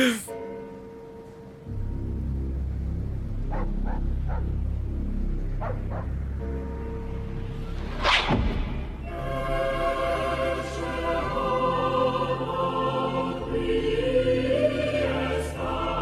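The Mr. Bean TV comedy theme tune: low rumbling and a few short tonal blips at first, then a sharp swell into loud, sustained, richly harmonic sung choral chords that carry on to the end.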